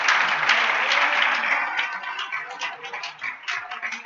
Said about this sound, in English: Clap your hands on the Lord.